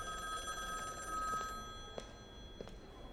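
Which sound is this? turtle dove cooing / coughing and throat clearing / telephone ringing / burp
telephone ringing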